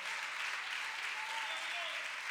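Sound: audience applauding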